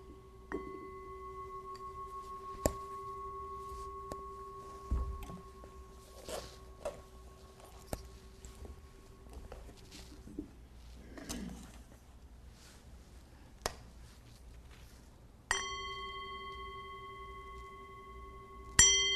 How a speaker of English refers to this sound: So I'll ring the bell and then take us into a 3-minute breathing space.